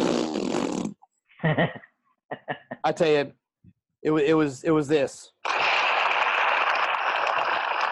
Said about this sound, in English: Can you hear that? What was that? That was my explosion sound effect. See? Is that it's supposed to be a bigger explosion.